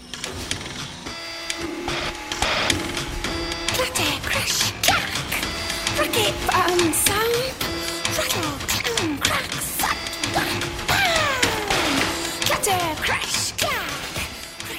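Dense, continuous factory machinery whirring and clattering in a film scene of Selma working at her factory job, with repeated sharp bangs and metallic clanks layered over a steady mechanical hum, loud throughout with no pauses.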